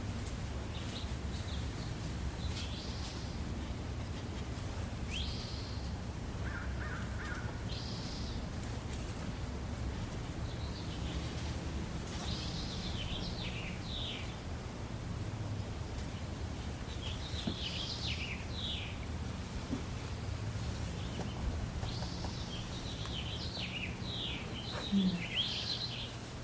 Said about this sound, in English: Feels like there's not much to add with the bird song and the wind that they could give the Dharma talk tonight. Yeah, we can just pause even as we're getting settled in, just listening.